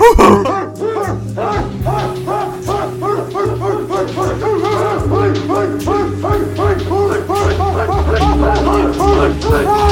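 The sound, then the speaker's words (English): Several people in a jail cell howl and yelp together at another man in the cell, a loud, unbroken chorus of wavering, dog-like cries, with a low steady hum running underneath throughout. “It's just them howling at the other guy in the jail cell.”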